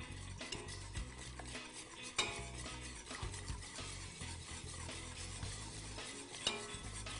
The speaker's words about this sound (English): Okay, so we're going to go ahead and put that melted chocolate in here. Okay, and then we're going to incorporate the custard mixture into the chocolate. And again, a little bit at a time.